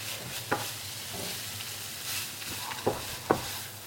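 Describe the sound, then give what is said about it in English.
A spoon scrapes and knocks against a pan in a few sharp clicks while a steady sizzle hisses underneath, soy-based plant mince being stirred and mixed as it fries. “But again, you find the mince that you like. So mix this all in.”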